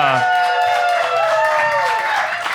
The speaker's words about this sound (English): This cast is 1,000 people. Anyway, are going to come on stage right now, and we're going to give them a big hootin' and hollering round of applause.